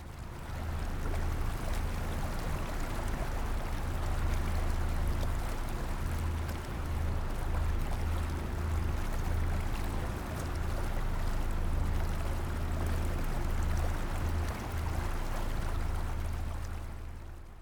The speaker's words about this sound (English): Okay, this sound is the sound of a Thailand riverboat on the Mekong River.